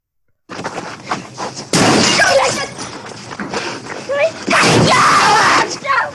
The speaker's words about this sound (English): So much screaming. Yeah, there was. That was when Leo got attacked by the bear, right? Yeah. Oscar-worthy sound, I'd say.